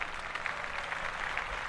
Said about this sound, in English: Clap that up.